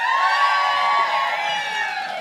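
A live crowd cheers loudly and steadily, a dense roar of many voices with high whoops and shouts layered on top, close and sustained throughout without a break.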